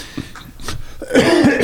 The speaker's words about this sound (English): Go ahead. You can cough.